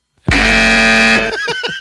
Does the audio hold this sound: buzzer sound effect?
yes